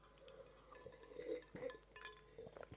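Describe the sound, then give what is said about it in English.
Drinking glasses clink together softly a few times in a toast before a sip, with faint ringing tones and quiet handling noises in between, fairly low in volume, with no one speaking. “Take a sip, because you absolutely need to shut up. So, cheers, Tom.”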